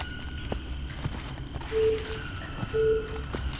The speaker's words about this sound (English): what is that beeping noise? Don't worry about it.